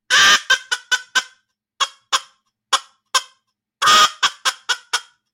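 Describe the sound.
A Polk pattern teal duck call is blown in two runs, each a loud, raspy opening note followed by a quick string of shorter, fading quacks, with no talking.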